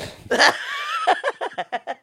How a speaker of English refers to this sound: You snorted. I know. I'm like sneezing like left and right today, which technically in my view is a good thing because that means I'm getting rid of negativity. But the snort necessarily wasn't part of that.